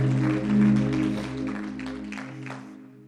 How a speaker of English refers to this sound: Why don't you clap your hands unto the Lord, and you may be seated.